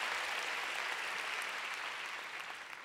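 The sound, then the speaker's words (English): A crowd applauds steadily, a dense wash of many hands clapping at once that holds strong and then gradually tapers off toward the end. “Let's give God a big clap.”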